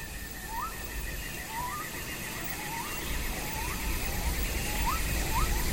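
A steady, buzzing drone of cicadas holds throughout, while short rising calls from other animals repeat every second or so over a low rumble of thunder that swells slightly toward the end.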